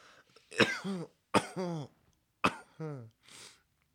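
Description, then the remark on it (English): A forceful sneeze and cough burst out at the same time, followed by two more harsh bursts with strained, groaning vocal tails and a final breathy exhale. “Sneeze and a cough at the same time.”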